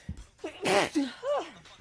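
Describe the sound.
Two sneezes in quick succession: a loud, noisy first burst, then a shorter, more voiced second one.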